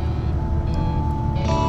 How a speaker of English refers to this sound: It's amazing that I can even do this though. I'm on a bus.